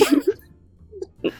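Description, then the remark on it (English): Short, sharp sneezing bursts: a quick cluster at the start, then a pause and one more abrupt sneeze near the end, with no talking. “Just sneeze.”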